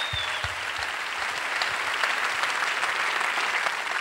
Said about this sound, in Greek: Και τώρα θα δώσετε το πιο θερμό σας χειροκρότημα στο πιο παλιό από όλους, αλλά και στο μαέστρο μας, στα πλήκτρα και την καλλιτεχνική επιμέλεια